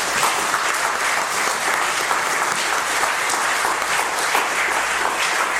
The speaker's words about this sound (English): Another round of applause for our new members.